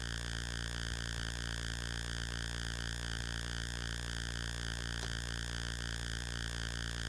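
A steady hiss of static on a phone line during a call to a football coach, with a faint buzzing hum running through it, unbroken and even for the whole stretch, with no voices coming through.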